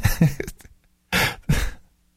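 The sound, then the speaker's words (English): A person clears their throat to hold back an early spring allergic cough: a rumbling, voiced rasp followed by two sharp, harsh bursts after a short pause, like a suppressed cough. No speech. “I'm somewhat sheepishly concerned that it was my preventing one of my early spring allergic coughs, so it may have no great meaning whatsoever.”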